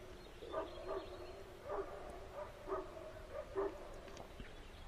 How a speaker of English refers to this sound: The dogs are barking now, but in an hour they won't be barking. Are the dogs defined by their barks?